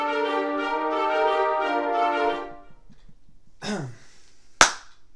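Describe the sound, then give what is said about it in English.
A single sharp hand clap, made to sync the audio of a recording, rings out alone near the end, following a long steady humming tone and a brief swooping noise, a quick loud crack with a short ring. “People clap. That's for if there's video.”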